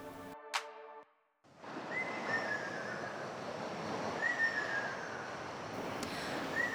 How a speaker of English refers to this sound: Wow, it's so relaxing. It's a bird called Akashobin. As they have a red beak and body, they are also known as firebird. You can find them in Ogimi village.